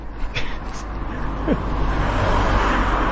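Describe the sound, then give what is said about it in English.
Cars pass along a road, a steady rushing roar with deep engine rumble that grows louder toward the end. No one speaks. “cars. Maybe I picked the wrong road to walk up”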